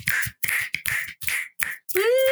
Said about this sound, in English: That was me snapping. Oh, we're also supposed to snap.